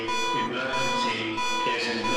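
A casino security alarm blares with a loud, steady electronic tone that holds unbroken for about two seconds over a dense, busy layer of other sound.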